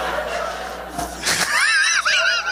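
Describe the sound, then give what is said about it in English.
A voice imitates a stud horse neighing: after a brief breathy rasp comes one loud, high wavering whinny that trills up and down for about a second, with no other sounds behind it. “I mean, looking at this horse, you'd just be like, if you looked at the animal, you'd just like back up.”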